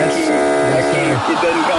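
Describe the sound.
A game show buzzer blares in one steady, harsh tone for nearly two seconds, its dense buzzing drone holding at constant loudness while voices murmur underneath.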